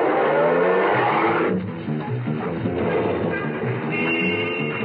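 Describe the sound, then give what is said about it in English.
A taxi's engine revs and pulls away from the corner of 59th Street and Madison Avenue, heading for Penn Station, its low rumbling drone loud, shifting as the vehicle accelerates off with steady mechanical noise and no voices. “At the corner of Madison, I flagged down a taxi and got in.”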